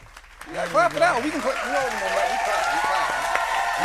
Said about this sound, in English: Oh, we gotta clap for that.